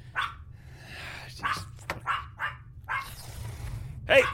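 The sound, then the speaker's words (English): A dog barks repeatedly in short, sharp bursts, several yips and woofs spaced irregularly over a steady low hum, with one louder bark near the end. “I don't want to hear any more barking from you.”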